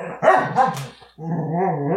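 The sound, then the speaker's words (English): Dogs Mackie and Baxter snarl and bark at each other in a loud, harsh scuffle over a rawhide Mackie is chewing: a burst of sharp barks, a brief pause, then a sustained rumbling growl that carries to the end. “They're fighting. They're fighting over something.”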